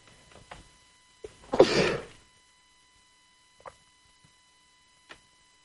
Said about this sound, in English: I was waiting for the next sneeze. They usually don't come in ones.